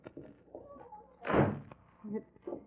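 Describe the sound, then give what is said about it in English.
A door swings shut with one solid, fairly loud thump midway through, preceded and followed by faint murmuring voices and light room noise. “Close that door.”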